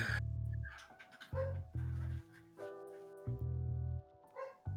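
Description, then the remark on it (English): A dog barks repeatedly in loud bursts, several barks coming at irregular intervals with short pauses between them. No one speaks. “Of course, the dog starts barking, too.”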